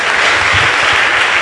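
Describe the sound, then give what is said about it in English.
An audience claps steadily after being asked to clap their hands, a dense wash of many hands applauding together, loud and sustained throughout with no voices standing out. “Clap your hands, sit down.”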